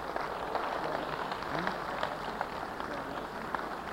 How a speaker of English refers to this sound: Why don't we give a little clap offering and thank him?